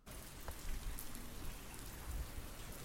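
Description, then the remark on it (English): Steady rain falls throughout, a dense continuous hiss of drops spattering on surfaces, with occasional louder patters and a low rumbling undertone; no voices are heard. “It is raining”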